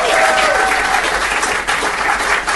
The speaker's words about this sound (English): When you clap, that's the time to go.